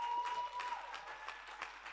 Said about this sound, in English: As I invite them, please clap your hands as they are coming.